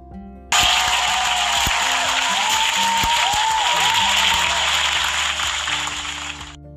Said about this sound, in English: I don't know about you guys, but I definitely applaud this. This definitely deserves a round of a fucking applause.